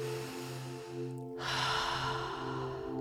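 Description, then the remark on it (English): A deep, drawn-out breath rushes in during a guided circular-breathing exercise, over a steady, humming musical drone, fairly loud, swelling after a brief pause and continuing to the end. “We're going to do some repetitions of breath.”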